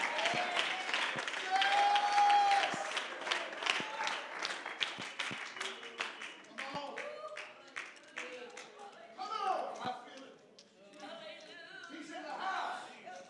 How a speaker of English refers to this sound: Come on, clap your hands. I'm trying to help you get your miracle tonight.